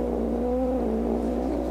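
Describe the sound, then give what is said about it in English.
A cat lets out one drawn-out, wavering yowl that holds for nearly two seconds over a steady low hum, with no talking. “Cat noise is pretty not unupworthy, because we know cats do nothing upworthy.”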